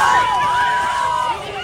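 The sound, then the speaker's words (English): A crowd of children at a school in Jacksonville, Florida, cheers and shouts together as an MMA fighter wrestles an alligator, a loud, continuous burst of overlapping high-pitched voices that holds steady for a moment before easing slightly. “You can hear the children cheering him on at the school in Jacksonville, Florida.”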